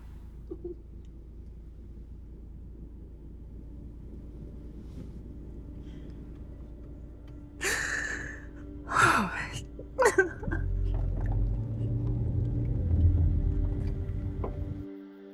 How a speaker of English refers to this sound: My porch door apparently wasn't locked. Oh no. And that gust of wind just blew it open.